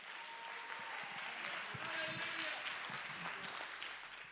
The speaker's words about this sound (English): Come on, somebody clap your hands and give God the praise.